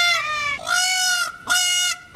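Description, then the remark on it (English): Wild peacocks call loudly, about three drawn-out, nasal, honking cries following one another with brief gaps, with no talking. “Wild peacocks are overrunning the Miami suburb, and Pinecrest has asked veterinarian Don Harris to control the peacock population.”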